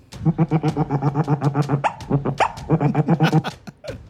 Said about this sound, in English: Is that A, a hedgehog, B, an otter, C, a hamster? It's an otter.